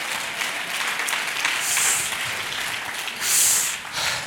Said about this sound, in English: Oh, clap your hands and praise him.